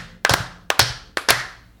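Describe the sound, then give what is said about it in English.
A small group does a count-off clap, clapping three times in a steady rhythm, each clap a sharp, loud smack smeared into a quick double hit because the hands land slightly out of sync. No one speaks. “We got to clap.”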